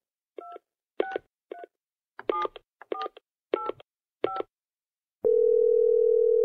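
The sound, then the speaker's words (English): A phone keypad is dialed with about eight short, clear touch-tone beeps in a quick, uneven rhythm, then a steady, continuous line tone takes over. No voices are heard. “You should call him. Get the phone.”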